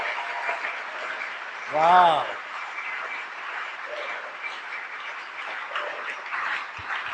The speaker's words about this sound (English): Give the Lord a mighty hand clap.